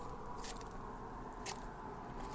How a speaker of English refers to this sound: Several squishing sounds can be heard.